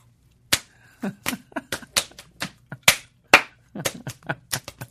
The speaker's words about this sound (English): Well, I'm going to have to do a slap dance.